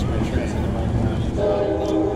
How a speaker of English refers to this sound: And then after the train goes by, I'll keep going. So yeah, that's a good old train in Oceanside.